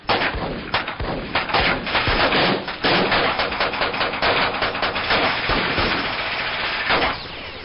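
A loud, sustained burst of gunfire aimed at captives aboard a ship: rapid overlapping shots crack in a dense, irregular volley for about seven seconds, then trail off abruptly. No one speaks.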